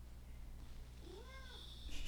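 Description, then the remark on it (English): A single cat meow rises and falls in pitch over about half a second, heard alone over a steady low background hum with no talking. “You could get a cat.”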